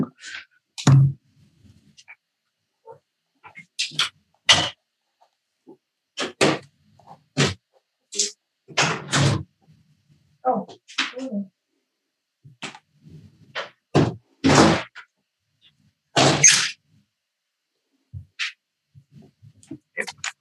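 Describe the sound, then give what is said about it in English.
A door is opened and later shut to let a cat out, amid a string of sharp clunks, latch clicks and shuffling movements spread over about twenty seconds, with no one speaking. “Also, my cat, hold on, I gotta let him out.”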